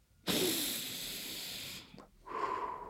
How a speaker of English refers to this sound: That's a signal, like somebody who's breathing like that, they're calm, right? And not only is it affecting you, but your partner or your competition, they can hear that.